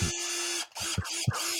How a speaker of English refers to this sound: I'm not going to ask why you have a drill.